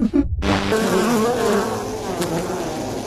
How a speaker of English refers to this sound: Bees? I'm allergic to bees.